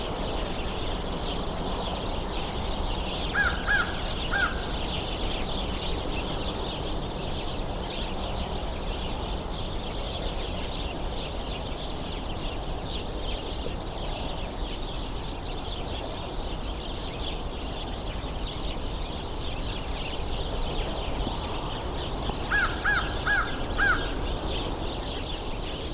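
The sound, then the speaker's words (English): An American crow caws twice, once early and once near the end, faint over a dense, continuous backdrop of bird chatter from a large flock. “American crow.”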